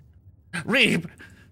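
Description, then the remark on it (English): A single heavy, voiced exhale, like a breathless gasp or pant, fairly loud, followed by a faint softer breath in otherwise quiet surroundings. “But as you fired off this molten beam, your face is reverted back to its normal appearance as you are breathing heavily.”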